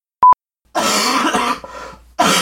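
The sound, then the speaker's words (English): Two quick electronic beeps, then a baby coughs in rough, breathy bursts: one long cough, a softer follow-up, and another starting as it ends. “cute baby coughs.”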